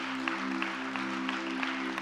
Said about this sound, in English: We love you. We're applauding you. We're celebrating with you.